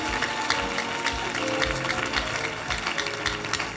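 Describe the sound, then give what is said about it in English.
A crowd of people clapping steadily throughout, dense and fairly loud, like an audience applauding a testimony, with a faint tonal hum of music or voices underneath. “Your clapping is against the testimony.”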